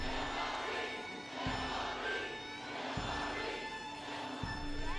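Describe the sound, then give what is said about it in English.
A dense rally crowd waving cardboard signs cheers and roars continuously as a woman walks onto a platform to a podium under fluorescent lights, with a steady rhythmic pulse repeating about every second and a half, like chanting or stomping beneath the din. “The fluorescent lights hit her, and she stares at the crowd waving cardboard signs with her name.”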